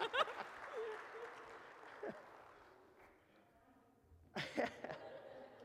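An audience bursts into applause that gradually fades, then swells again in a second loud round, with scattered voices and cheers mixed into the clapping.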